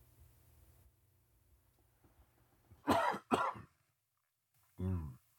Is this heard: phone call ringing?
no